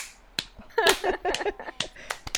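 Slow clapping: sharp, crisp claps spaced about half a second apart, with a voice murmuring briefly in the middle of the run.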